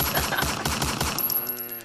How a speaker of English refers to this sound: Bust some shots.